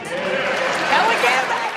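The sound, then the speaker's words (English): A dense wash of crowd cheering from the movie The Campaign, many voices shouting and whooping together at a steady, loud level for the whole stretch, with no single speaker standing out. “I love the crowd cheering. That's from the movie The Campaign, in case you're wondering.”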